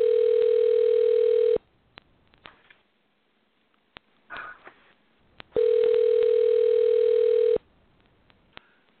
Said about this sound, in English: And we got him. You hear the phone ringing now. He's going to come on in a few minutes.